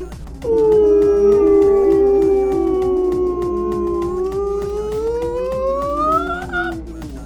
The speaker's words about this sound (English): Space whale noise time.